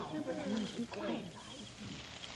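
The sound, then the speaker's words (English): Several short, low owl hoots sound in quick succession in a forest, moderately loud, used as a signal call, mixed with voices talking over and around them. “Hear that? What? That owl.”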